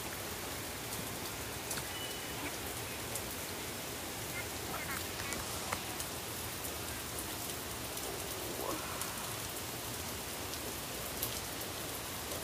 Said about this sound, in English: And yes, guys, it is currently torrential downpour.